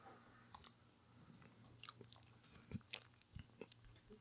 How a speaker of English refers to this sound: Small sips. Yeah, small sips indeed. It's not bad. I don't know what it is. It's not. I wouldn't call it. It kind of tastes like water.